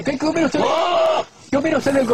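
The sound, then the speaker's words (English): A goat bleats and hollers in loud, wavering cries: a short call, then a long drawn-out wail, a brief pause, and another quavering bleat, prominent. “That's the goat that they use on social media whenever somebody gets kicked in the balls.”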